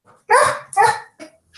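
A dog barks twice in quick succession, loud, then gives a shorter, softer yelp. No one speaks.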